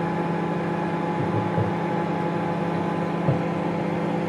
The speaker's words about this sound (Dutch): Ja, weer een soort huishoudelijk apparaat. Ja, kom op zeg. Herken je dit? Dit is de magnetron. Ik wilde het net zeggen. Ja, toch? Ik zat te twijfelen tussen de papierversnipperaar of de magnetron.